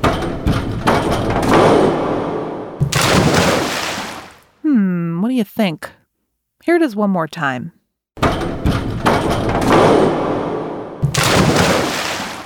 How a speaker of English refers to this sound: So, what's that sound? Diving! The sound you heard was a diver bouncing on a diving board before splashing into a pool.